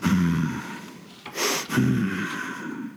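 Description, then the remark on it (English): A person imitates a creature with a swine-like upturned nose sniffing: a quick burst of sharp, breathy nasal inhales framed by low, rumbling vocal breaths, with no words. “And it sniffs.”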